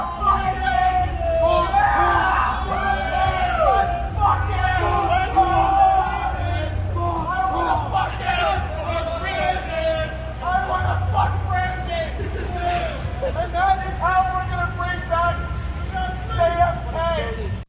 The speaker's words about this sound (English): he kind of just blends into a crowd and you hear a chant.